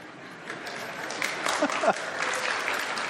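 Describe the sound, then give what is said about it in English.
A crowd applauds steadily, a dense wash of clapping that swells slightly midway, with a few brief voices or cheers rising above it. “That's the one you clap over.”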